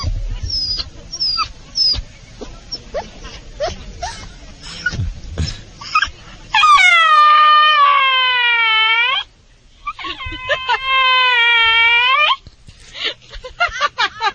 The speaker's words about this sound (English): Now, I was hearing something. I had to turn around because I hear this dog talking, and I wanted to see if we could get it on mic. Now, will it talk to me?